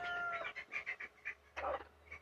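A baby Old English Creole bird peeps and chirps, a series of short, high, squeaky calls in an uneven rhythm, with a louder burst near the end and no talking.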